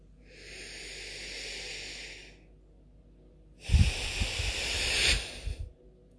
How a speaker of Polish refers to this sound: Takie świeże powietrze. I wydychasz przez nos, już takie ciemne, to właśnie uczucie, to uczucie gniewu, i wypuszczasz je, ono się rozpuszcza w przestrzeni, opuszcza Twoje ciało, opuszcza Ciebie. Więc weźmy takie 3 wdechy razem.